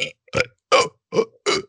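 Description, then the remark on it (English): A voice imitates burping, producing five short, throaty belch sounds in a steady rhythm, each loud with brief silences between, no other talking. “I was just mimicking. I wasn't actually burping.”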